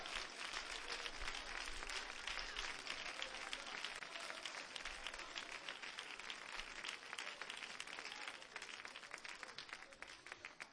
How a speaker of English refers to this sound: Come on, clap your hands.